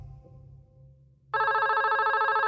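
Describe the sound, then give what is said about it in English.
A landline house phone starts ringing abruptly after a low hum, a loud, rapidly trilling electronic bell that continues steadily to the end. “I get this frantic call on my house phone and I answer and I'm like, hello, you know, and it was my doctor.”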